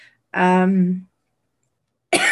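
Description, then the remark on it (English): A person coughs: a rough, voiced hack lasting under a second, a short pause of silence, then another harsh, breathy cough burst starting right at the end. “This is making me cough.”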